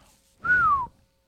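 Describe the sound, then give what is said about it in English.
A single short whistle close to the microphone, a clear tone that starts a little high and glides gently downward over about half a second, with breathy noise around it, then quiet. “I just whistled into the microphone.”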